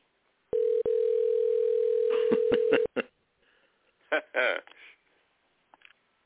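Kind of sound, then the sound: signal or alarm, telephone dial tone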